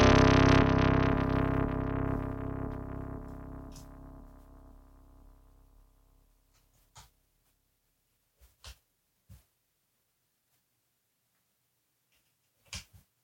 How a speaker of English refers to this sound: Oh, you know what we haven't done? We haven't put this through the tubed distortion. So let's do that.